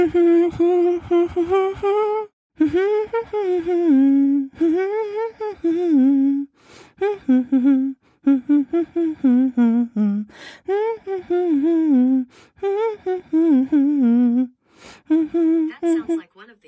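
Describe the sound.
Someone hums a song melody alone, a string of wordless phrases with sliding, bouncing notes in a mid vocal pitch, broken by short pauses and held fairly loud throughout.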